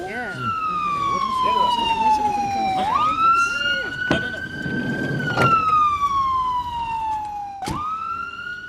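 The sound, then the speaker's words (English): A loud ambulance siren wails in long, slow sweeps, its pitch gliding down and then snapping back up, over a rumble of street noise. “Two young men got out of the front and opened the back of the ambulance.”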